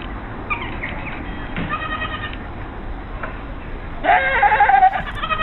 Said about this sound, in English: Okay. So that's goat number one, the Swedish goat. Great. It's in contention for official goat sound of of Up on the Roof.